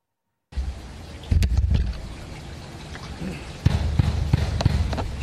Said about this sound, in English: So there it is, ladies and gentlemen, the banging on the front door of Roger Stone that woke him up this morning.